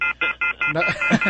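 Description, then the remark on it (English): A rapid series of short electronic telephone dialing tones, about six evenly spaced beeps, with a voice starting to speak over the last few, as callers are dialed up on the phone line. “Let's see if we can bring them up on the phones.”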